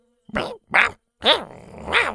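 Two small dinosaurs, Shoot and Toot, growl and snarl in four short bursts as they chase and nip at a chinchona plant hanging from a walking stick, with sharp yelping pitch swoops and brief gaps between them.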